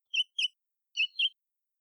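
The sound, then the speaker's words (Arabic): A small bird, Tito from a children's story, chirps four times in two quick pairs, high-pitched tweets separated by a short pause, clear with silence in between. “تيتو عصفور صغير ولطيف،”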